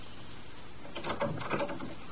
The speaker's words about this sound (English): Why'd you close the door?